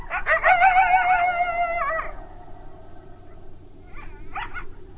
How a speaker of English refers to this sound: I woke up again to a pair of coyotes howling somewhere nearby, and one of them seemed extremely close.